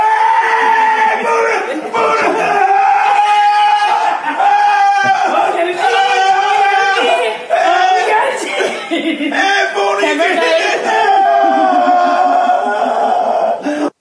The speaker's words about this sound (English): If you were listening to the audio only, you just hear yelling, which is nice.